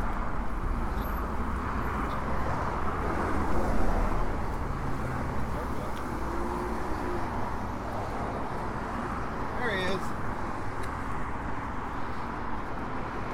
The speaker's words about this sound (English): Now we get to deal with some traffic.